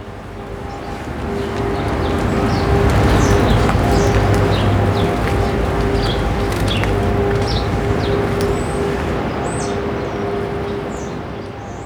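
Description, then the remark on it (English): Birds chatter with quick, scattered chirps and short calls throughout, set against a steady outdoor rumble with a faint mechanical hum underneath. “Birds look at me with curiosity, continue their little talks.”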